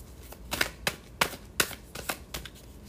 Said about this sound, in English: These cards are a little thicker, so they're a little harder to shuffle.